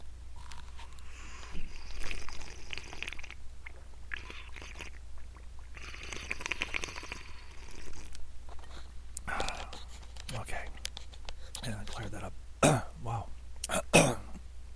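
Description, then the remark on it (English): Sipping water and swallowing after choking on a carrot, then a series of sharp, raspy throat clearings and short coughs toward the end, loud, with no talking. “Sorry, I just choked a little bit. I think it was a carrot. Hold on, let me have a sip of water.”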